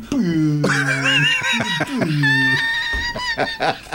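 Loud birds call and chirp in a busy, overlapping morning chorus, with warbling, sliding notes and a few higher whistles running continuously for several seconds.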